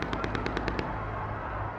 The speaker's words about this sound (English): And then, from the mass of charging navy blue shock troops, comes the classic American blood red popcorn rat-a-tat of machine gun fire as the wave breaks the line and reaches the front doors of the Carnegie Hill Autonomous Zone.